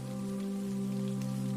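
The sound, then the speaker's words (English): Soft, steady rain from a gentle night-time drizzle patters on a roof in a continuous, even wash of droplets, fairly quiet, with no voices. “With a soft, comforting patter of raindrops falling on the roof, she drifts into a soothing, deep sleep.”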